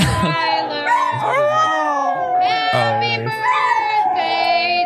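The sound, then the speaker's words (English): A family's pit bull howls in long, wavering pitched tones that rise and fall, loud, mixed in with people singing Happy Birthday together. “off this good news segment right with a family's pit bull helping them sing Happy Birthday.”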